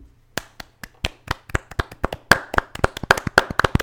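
Hand clapping, starting as slow, evenly spaced sharp claps and quickening into a denser, slightly uneven patter, with no talking over it.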